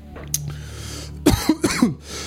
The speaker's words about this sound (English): Oh, that hard cough is...